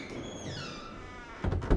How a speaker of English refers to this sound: and upon the location of the aforementioned ingress-allowing apparatus, I unlocked the vast creaking door and entered Peldergrin proper.